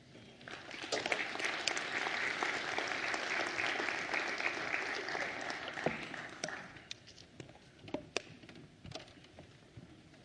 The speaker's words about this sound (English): If you give them a round of applause.